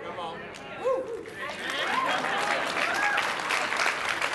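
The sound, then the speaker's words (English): An audience breaks into steady applause, a dense wash of clapping that holds for about four seconds, with a few voices calling out over it. “You might be a bit slow to clap, but I'm just talking about you.”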